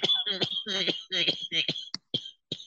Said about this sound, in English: Must be some good ass some Carolina cactus if it got you coughing like that though.